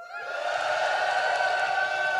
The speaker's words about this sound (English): Okay. Question number one in the Christmas dinner table quiz. Turkey or no turkey? Give me a cheer if there is turkey on your Christmas dinner table.